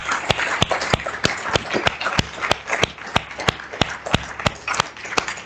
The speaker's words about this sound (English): Clap your hands one more time for Jesus, would you?